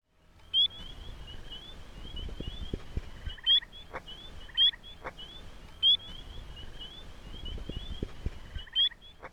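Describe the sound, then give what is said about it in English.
Spring peeper frogs calling by a lake in the daytime: sharp, high, rising peeps repeat every second or two from one frog, over a steady shrill chorus of many more peepers. “The spring peeper.”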